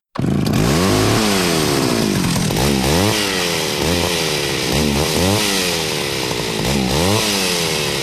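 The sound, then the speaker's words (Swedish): A chainsaw sound effect revs repeatedly, its engine pitch sweeping up and down in rhythmic bursts, loud throughout, with no voices. “men bara baserat på vad han har presterat nu så blir motorsågen igen.”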